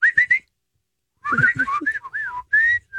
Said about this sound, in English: I do whistle for my dog, and he recognizes it. I'll be like, I mean, it's pretty. Here's lame. The whistle I do for my dog.